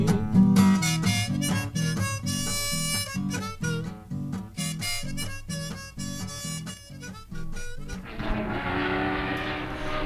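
Race car engines at the Baloney 500 Speedway roar and rev in repeated loud bursts, giving way to a steady, broad rushing roar near the end. No one speaks.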